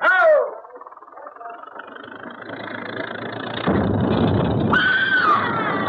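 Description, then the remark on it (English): A person screams in two short, high, wavering bursts, one at the very start and another near the end, the screams coming from somewhere up in a wall, over a steady engine-like rumble that grows louder midway. “Somebody screamed.”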